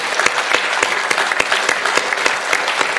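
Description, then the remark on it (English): A large church audience applauds steadily for the leaders of its small groups, a dense wash of clapping with sharper individual claps popping out, fairly loud, continuing without pause and with no talking over it. “Everybody, give them an amazing round of applause right across.”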